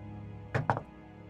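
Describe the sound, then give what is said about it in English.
Two or three dull knocks, given in answer to a question put to a supposed ghost, land in quick succession, fairly soft, with a steady low hum in the quiet background and no talking. “Was that two or three knocks?”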